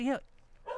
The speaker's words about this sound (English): Now he's barking at that poor cat. Cat's up that tree. He can't get down now.